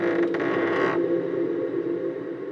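A door creaks open in one long, sustained groan, loud, its strained hinge tone wavering steadily for a couple of seconds with no voices.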